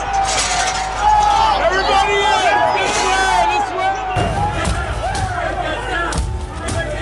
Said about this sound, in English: There's pounding on the doors of the chamber. And at this point, they've put a large piece of furniture in front of the doors, and plainclothes officers had their guns drawn. There was glass that was broken on the actual door as well.